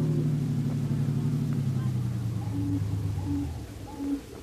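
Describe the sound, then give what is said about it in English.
A car engine drones steadily as the vehicle drives fast toward the waterfront, a low continuous rumble that fills the whole stretch, with a few short higher-pitched tones chirping in toward the end. “Don't drive so fast, Brother Harry. We don't want to attract the police. Especially with that Bobo's body in the back of the car.”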